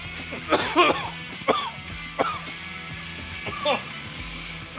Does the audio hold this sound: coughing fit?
yes